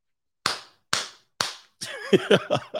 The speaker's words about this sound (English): Right to the clapping.